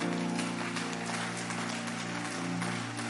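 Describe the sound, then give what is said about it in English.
An audience claps steadily as a clap offering during a church sermon, a dense, sustained wash of applause that holds at an even level throughout, with a low steady musical drone sounding underneath. “Increase that clap offering for me.”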